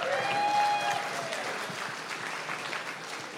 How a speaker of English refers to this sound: Big round of applause.